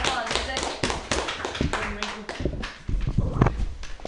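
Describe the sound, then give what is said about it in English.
An audience at a comedy open mic claps steadily for a few seconds for the next comedian, a dense patter of many hands, with some voices mixed in beneath the applause. “Clap your hands for your next performer.”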